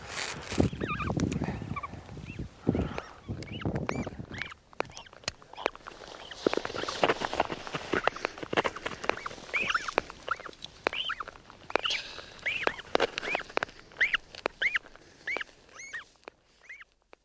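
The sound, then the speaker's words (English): A bird lets out loud, shrill screaming calls again and again in rapid, uneven bursts, high-pitched and harsh, with brief gaps between cries and no talking over them. “Oh, it's alive and screaming.”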